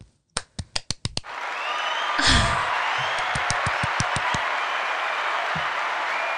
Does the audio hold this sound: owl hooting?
no